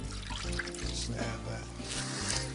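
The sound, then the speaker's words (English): Water is poured steadily into a baking pan around ramekins of creme brulee in a continuous splashing trickle lasting a couple of seconds, moderately loud, with a low steady hum underneath. “If your hands are a little bit shaky, I would recommend put this in the oven first, then put the water in it, because man, let me tell you, if you get that water in the creme brulee, you're done.”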